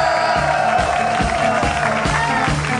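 A crowd at a Hermantown live show at Meltdown Comics cheers and applauds in a loud, continuous wash of noise as the show's mayor character is welcomed to the stage, with steady rhythmic thumps pulsing underneath about three times a second.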